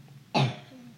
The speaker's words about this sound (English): You have a very bassy, deep cough